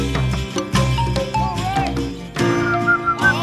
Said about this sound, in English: I can't even, I don't, it's my favorite song on the record, and I can't even whistle the right part.